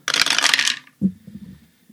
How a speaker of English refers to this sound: to be fair, we're referencing the dice being used.